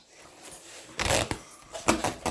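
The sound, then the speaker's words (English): Brisk rustling and pulling of fabric as a corset is laced up and knotted on a woman backstage, with two sharper bursts of cord drawn tight between quieter shuffling. No one speaks. “currently helping me take my bra off and knotting me into a corset.”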